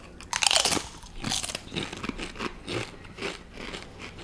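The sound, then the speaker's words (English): A sharp, loud crunch as a whole tortilla chip is bitten, followed by several seconds of steady, crackly chewing in an irregular rhythm, with no talking. “Of course, we have to like just down the whole chip.”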